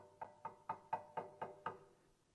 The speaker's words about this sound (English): And those five foolish came knocking on the door.